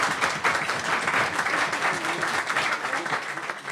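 Steady applause from an audience, a dense, even wash of many hands clapping at once, sustained at a fairly constant loudness with faint voices mixed beneath it.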